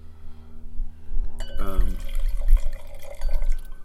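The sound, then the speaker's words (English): A 2019 Syrah blend wine glugs and splashes into a glass at a wine tasting partway through, the pour rising in pitch as the glass fills, with a steady low hum and murmuring voices in the background. “He's got a glass full.”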